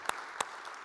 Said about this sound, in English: So let's give our two actors a round of applause. Thank you very much.